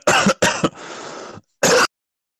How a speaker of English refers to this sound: No, I muted again. I muted again because I'm still coughing, choking on my motherfucking drink that I was taking.